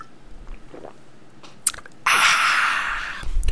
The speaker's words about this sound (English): Let's all drink some water and regroup.